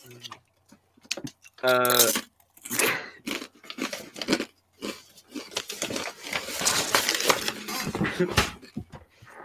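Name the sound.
crunchy chewing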